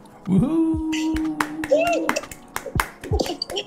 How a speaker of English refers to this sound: a round of applause and go woohoo at the end of it, you know, just to acknowledge each other. And I'm manifesting one day trying to do this in front of an audience of people. So that's kind of why I do the round of applause.